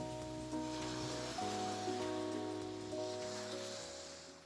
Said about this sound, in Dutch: Goedemorgen vanuit Bali. Deze keer niet vanuit de hangmat, want het regent. Dus misschien horen jullie op de achtergrond gezellige regendruppels.